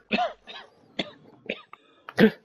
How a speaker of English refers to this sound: Oh, COVID cough. I'm just dying. Is it persistent? Can you do it quietly?